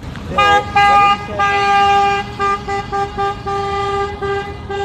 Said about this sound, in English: Now, vehicles honk in support. Rotating strikes impacted a number of school divisions around Moose Jaw, the Battle Fords, and Prince Albert. Some 3,000 teachers were back on the picket line.